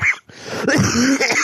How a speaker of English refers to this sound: Yeah, that's the cough right there. Yeah, we all know that cough, yeah.